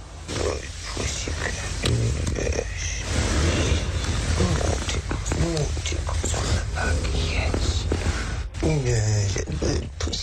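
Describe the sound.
A person on Celebrity Big Brother imitates a purring cat, producing a loud, rough, rumbling breathy noise that runs almost continuously, broken by a few voiced, moaning swells.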